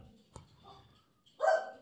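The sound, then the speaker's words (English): A single loud dog bark rings out near the end as someone drops off mail, preceded by a brief sharp click and faint rustling, with no talking over it. “Poor dogs, it's barking everything.”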